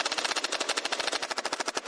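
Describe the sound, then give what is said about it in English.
A Nerf gun firing in a rapid, steady burst, a fast run of sharp, hissy clacks repeating for about two seconds, fairly loud, with no voices. “Johnson then turned his engineering eye on the Nerf gun. Shoot.”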